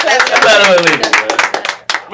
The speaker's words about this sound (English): Let's clap it up for the ladies.